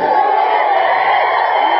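A large crowd cheers and claps loudly and steadily, a dense wall of voices and applause with scattered whoops rising above it throughout.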